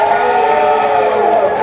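A large audience cheers and applauds for a woman brought to the front of the stage, in a loud, continuous roar, with many voices blending into a dense wash of crowd noise that holds steady throughout.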